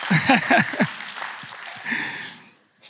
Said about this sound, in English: And that was the worst clap I've ever heard. If you're going to clap in C3 Silverwater location, clap like you mean it.